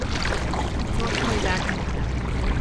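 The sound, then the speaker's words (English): Oars pulling through water as a boat is rowed during a rowing lesson, a steady rush of churning splashes and swirling water that stays at an even loudness without pause. “Oh, that was a nice stroke.”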